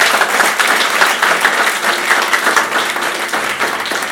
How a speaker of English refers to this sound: We were tremendously blessed. A round of applause one more time.